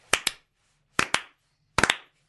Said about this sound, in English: Can I just be the first to start the slow clap?